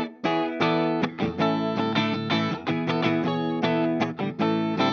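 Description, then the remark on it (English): An electric guitar played on its bridge pickup plays a busy run of bright, sustained chords and notes, loud, with a slightly edgy, processed tone and no talking over it. “This, Ed, is the bridge.”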